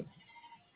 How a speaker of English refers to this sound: Yeah. Goat.